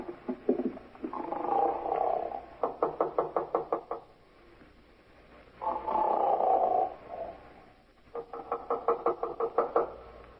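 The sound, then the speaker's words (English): Loud, heavy snoring from a man in room 9 repeats in two full cycles, each a rough, rumbling drawn-out breath followed by a rapid string of fluttering, pulsing rattles, with no talking. “Guy's snoring up a storm at 9.”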